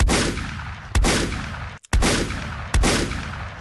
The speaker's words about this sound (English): The gunshots. Hear the motherfucking gunshots, nigga.